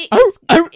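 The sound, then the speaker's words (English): A person imitates a whooping cough with two loud, rough, voiced barking bursts in quick succession, with a short pause between them. “What does a whooping cough sound like? I imagine it quite a bark.”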